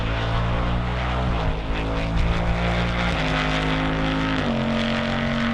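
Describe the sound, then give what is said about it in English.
A Ford Mustang V8 muscle car's exhaust drones loudly, a steady throaty rumble that jumps up in pitch three times as the engine climbs through gears. No voices. “Even if people aren't going to take it on track, they want it to sound like a classic muscle car and look like a classic muscle car.”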